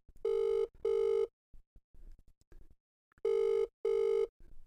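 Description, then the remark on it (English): A phone ringing through a speakerphone as a call is placed to the speaker's father: two double-ring bursts of a steady electronic tone separated by a pause, fairly loud, with faint clicks and rustles in between. “It's ringing.”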